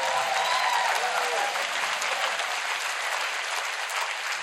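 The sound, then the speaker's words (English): An audience applauds the worship team steadily for several seconds, a dense, even wash of clapping that stays loud throughout with a few faint whoops or cheers near the start and no one speaking. “How about a round of applause for the world's best worship team?”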